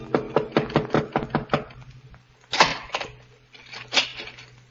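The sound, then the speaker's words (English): A quick run of about seven or eight sharp raps on a door, evenly spaced, followed after a pause by a couple of heavier, louder bumps, a few minutes before midnight. “A few minutes before midnight, the knock came.”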